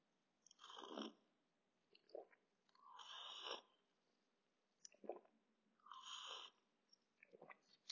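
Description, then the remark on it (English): Loud slurping sips of black coffee, three main drawn-in gulps spaced a few seconds apart with small mouth noises and swallows between them, no talking. “Hold on while I take a sip of my black coffee.”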